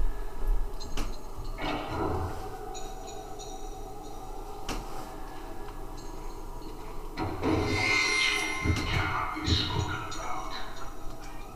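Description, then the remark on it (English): A few sharp clicks and knocks as a diamond link key works a lock engraved with a diamond link pattern family crest, followed by a long grinding rumble as a heavy sliding door scrapes open. “You unlock the door with the diamond link key.”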